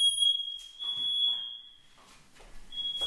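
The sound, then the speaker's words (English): A loud, piercing smoke alarm, set off by hookah smoke, sounds steadily for over a second, cuts out, then starts again near the end, with scattered rustling and faint background noise in between. “Smoke alarm because of the hookah.”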